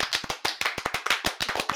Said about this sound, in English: Round of applause for us all.